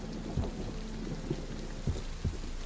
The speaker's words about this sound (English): Now, you find yourself on the outdoors of the prison. It is raining as you come outside. The storm clouds you saw as you were coming in have coalesced into a pretty heavy downpour.